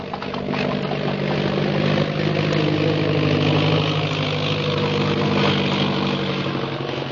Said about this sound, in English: Speak of flying, listen. You hear an airplane motor? Yes. There. There is airplane.